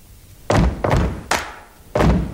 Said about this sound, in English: Stamp to this beat. Come on. Now, I want you to clap on the third beat.